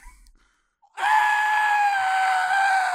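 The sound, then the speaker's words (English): After a brief near-silence, a person lets out a loud, sustained scream of pain, a staged reenactment of yelling after putting contact lenses back in, that holds steady for about two seconds and sags slightly in pitch, voiced backed up from the microphone. “Let's get a snippet of that scream, but back up from the mic.”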